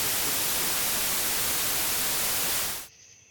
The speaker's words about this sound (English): Sorry, what? Is there a problem? Interference? What kind of interference? A static, or it's like something coming from...